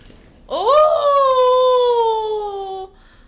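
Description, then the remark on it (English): A voice imitates the howling wind on the moors of England with a single long, loud "oooo" that swoops up in pitch, then holds and slowly sinks for about two seconds before cutting off. “It's windy outside. The wind in the moors of England.”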